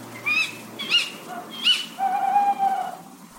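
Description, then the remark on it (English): A tawny owl duet: three sharp, rising ke-wick calls in quick succession, then a long, steady hooting note answering from another bird, clear with no talking. “So if you listen out for the tawny owls, I mean, the classic description of their call is tuwit tuwu. In reality, it's a duet, so it sounds like tuwit tuwu.”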